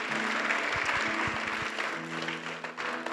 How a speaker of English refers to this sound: Come on, let's give everyone a clap that gave their life to Jesus.